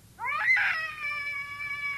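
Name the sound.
cat caterwauling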